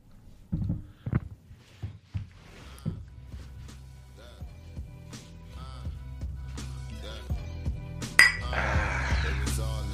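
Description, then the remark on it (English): Glasses clink together in a toast, several bright, ringing taps in quick succession, over a low, busy background murmur that swells toward the end. “It is time to clink it up.”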